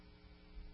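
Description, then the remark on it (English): A steady, low electrical drone from an air conditioning unit hums quietly and continuously through the brief moment, with no voices or other sounds over it. “We do have air conditioning today.”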